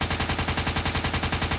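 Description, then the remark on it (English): Loud fire from pylon-mounted machine guns rising from tiled floors in a rapid, steady burst of evenly spaced shots, roughly ten per second, continuing unbroken for the whole moment with no voices. “Pylon-mounted machine guns swiftly bloom from the tiled floors.”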